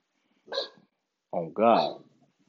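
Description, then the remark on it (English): A dog named Lasagna gives three short, yelping barks: one alone, then a pause, then two in quick succession, the last one longer and more drawn out. “I know y'all just heard my dog.”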